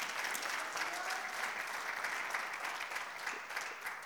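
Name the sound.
audience applauding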